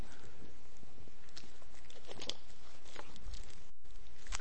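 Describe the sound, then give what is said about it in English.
Someone drinking water: a few soft sips and swallows with small clicks and light rustling over a steady hiss, with no one talking. “You gotta hear what I'm gonna say after I drink some water, okay?”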